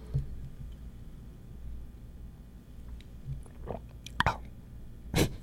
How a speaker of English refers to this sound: It's my metal water jug. I got a metal water jug because I read all these articles about how plastic can destroy your innards. So now I have something called a clean canteen.